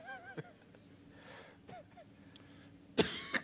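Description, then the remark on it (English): A throat is cleared with a few low, raspy sounds, then a loud, harsh cough bursts out near the end, with no talking. “I gotta cough.”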